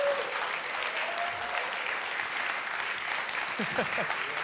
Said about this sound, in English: And so if you would, with a thunderous applause, if you would come and welcome up our amazing staff. Go ahead and bring them on up.